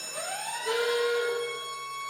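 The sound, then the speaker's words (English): An alarm siren sound effect, played as "this is not a drill" music, plays alone: a steady, moderately loud electronic wail with a tone sweeping upward and holding, layered with high sustained harmonics. No one speaks over it. “Yeah, a little late on the "this is not a drill" music, but anyway.”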